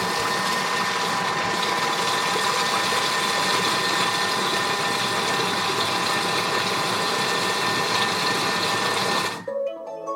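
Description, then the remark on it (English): A robotic kitchen appliance mixes a filling with a loud, steady mechanical whir and a constant humming pitch for about nine seconds, then cuts off abruptly. No one speaks. “Okay, we're going to mix our filling for 10 seconds.”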